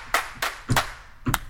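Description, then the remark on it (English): Several sharp hand-clap sounds played on a small two-octave keyboard, in quick, uneven succession, some landing almost together as if from more than one person, with no talking. “There you got claps.”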